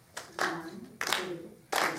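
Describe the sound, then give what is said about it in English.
Hands clap sharply three or four times at a steady, unhurried pace, each clap followed by a short ring, while a voice counts one to four along with the beat. “Can you clap while you count?”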